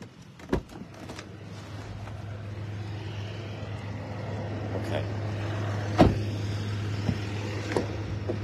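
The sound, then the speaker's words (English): Heavy trucks rumble in a steady, droning low engine noise that fills the whole stretch, broken by a few sharp metallic clunks and knocks. “Heavy trucks.”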